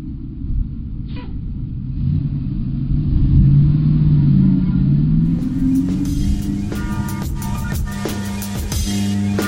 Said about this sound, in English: I can't see. But I think I hear the bus. Okay. Let's go to the bus.